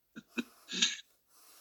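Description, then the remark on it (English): Two quick, sharp catches of breath followed by a longer, rushing breathy gasp, fairly loud, then a faint hiss of air trailing off. “The body channels it through tears, gasping.”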